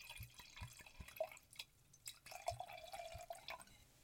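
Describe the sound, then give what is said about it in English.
Liquid trickles and drips into a glass as a drink is poured, with a faint ringing tone holding steady in the second half. Quiet, with no voices. “So, like I said, I'm going to go ahead and just pour up.”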